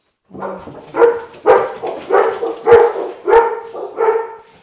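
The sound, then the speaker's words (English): A dog barks repeatedly, about seven loud barks in a steady rhythm, each with a slightly whiny, yelping edge, with no talking. “This is round two of Uppy, Uppy, Uppy, where everybody's dogs are barking now.”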